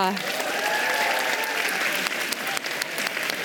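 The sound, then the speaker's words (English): Sustained applause from a large audience for Roberta Metsola, President of the European Parliament, a steady dense wash of clapping at an even loudness for the whole stretch, with a few sharper individual claps standing out. “Please give a warm round of applause to the President of the European Parliament, Roberta Metsola.”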